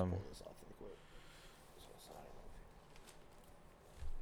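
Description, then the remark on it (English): Faint paper rustling and shuffling as a flopping sheet of paper is moved out of the way, with soft crinkly bursts scattered over a few seconds. A muffled voice is briefly audible at the start, and the whole scene is quiet. “This paper out of the way. Keep flopping around.”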